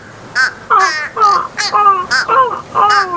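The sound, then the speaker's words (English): A person's voice imitates a crow, letting out a rapid series of about six harsh, nasal caws in an uneven rhythm, loud. “Can you do a crow impression?”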